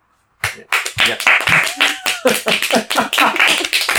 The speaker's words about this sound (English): we should do the applause.